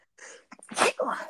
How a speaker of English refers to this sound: Bless you. Thanks. I'm going to keep a little track of my sneezing.